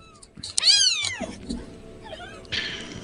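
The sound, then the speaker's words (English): About five kittens mew: several high, thin mews overlap and repeat in quick succession, some rising and falling in pitch, fairly loud with no one talking. “I can hear 5 kittens.”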